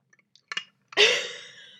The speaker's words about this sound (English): Water pause. It's water break. We've established that.